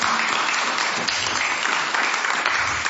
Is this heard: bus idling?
no